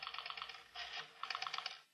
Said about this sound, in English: And then Ralph dials a number on the phone.